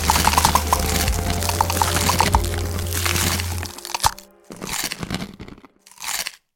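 Crunching of a Toffee Crunch Oreo sandwich cookie with crunchy sugar crystals: a dense run of crackly bites for several seconds, then a few shorter separate crunches with brief pauses between, loud with no talking.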